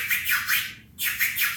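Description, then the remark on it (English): Rhythmic turntable scratching, a quick run of bright back-and-forth swipes with a brief pause in the middle before the pattern picks up again, with no one talking. “So I have this one scratch that I used to do that's like a...”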